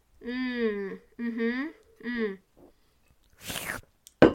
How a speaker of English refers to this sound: Oh, this week, once again, sponsored by water. Slurp, slurp.